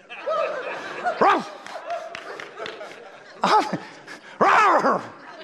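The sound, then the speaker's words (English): Someone mimics a dog, letting out three loud, short barks spaced a second or two apart, over a background of crowd murmur and light laughter. “Somebody bark.”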